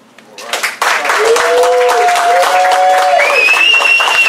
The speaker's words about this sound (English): All right. Let's give everybody a huge round of applause. Thank you, everybody, for coming as well.